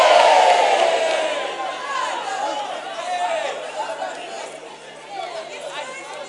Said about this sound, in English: They don't believe it, isn't it? Some people are shouting here that they don't believe it.